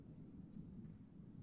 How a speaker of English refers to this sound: And from the sound of the thunder, it sounds like I have 20, 30 more minutes to talk because you may not be going anywhere.